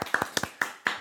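Hands clapping in a short, uneven burst of about six sharp, crisp claps with slight gaps between them, moderately loud and with no talking over them.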